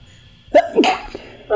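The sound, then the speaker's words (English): A single sneeze rings out, a voiced intake sharpening into a loud, hissy burst, followed by a brief pause before a voice starts to speak. “Bless you. Gesundheit. Bless you.”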